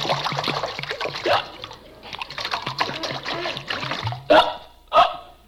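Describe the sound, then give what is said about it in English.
Water pours and splashes steadily for several seconds as someone by a window waters a potted geranium, a bubbling trickle with uneven spatters, followed near the end by two short, loud bursts. “Well, while I'm standing here by the window, I might as well water my plants.”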